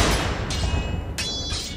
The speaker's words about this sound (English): Somehow, Don manages to fend off John's first powerful strikes, and narrowly dodges a sweeping slash, which impacts one of the large stone columns, causing a violent explosion.